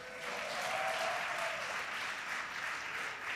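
An audience bursts into sustained applause during a sermon, everyone clapping along with a little boy, a dense, steady wash of many hands clapping at once, holding an even loudness for the whole stretch with no voices standing out.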